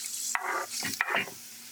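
Onions sizzle in hot olive oil with a steady crackling hiss, broken by a few scraping strokes of a utensil stirring the pan. No one speaks.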